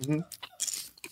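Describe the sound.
Close, crunchy chewing of a snack in a few quick bursts, with a short voiced murmur at the start and mouth noises between the crunches.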